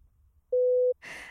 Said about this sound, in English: I'm also going to sneeze.